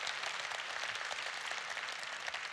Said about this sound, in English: I want you to know, if you just applauded, you were really applauding yourself, because our partnership is doing this.